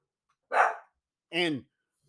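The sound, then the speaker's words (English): Dobby the house dog barks twice, two short, sharp woofs about a second apart, clear with silence around them and no one talking. “That don't end the half as Dobby the house dog is barking.”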